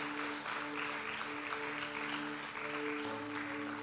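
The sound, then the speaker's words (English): A church audience claps steadily in sustained applause for those who prayed a prayer for the very first time, a dense wash of hand claps lasting the whole stretch, with a held low musical tone humming underneath. “Come on, let's give all those who prayed that prayer for the very first time a great round of applause.”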